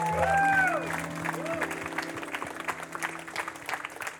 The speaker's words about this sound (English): Can we just give Jesus a hand clap this morning?